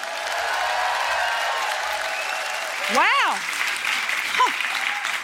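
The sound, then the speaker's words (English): An audience at an evening debate event claps loudly and steadily to choose the winners, a dense wash of rowdy applause, with a rising-and-falling whoop cutting through midway and a brief shout of approval near the end. “So, let me hear your rowdy applause.”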